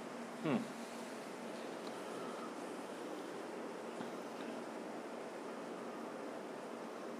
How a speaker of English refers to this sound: Yep, it's raining. It's raining. So I don't know if these mics are sensitive enough to pick that up, but that's a nice little ambiance.